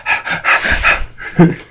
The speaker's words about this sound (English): Stop distracting me. I'm not saying anything. You're breathing.